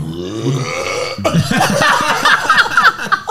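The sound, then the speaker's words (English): A long, loud belch rumbles for over three seconds, starting low and then breaking into a rougher, gurgling stretch with pulsing bursts, no talking over it. “Imagine a client sees me now and I'm burping.”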